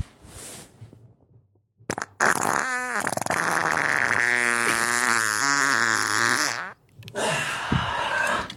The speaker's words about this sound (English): Here's a fart for you. I hope you enjoy it. Here you go.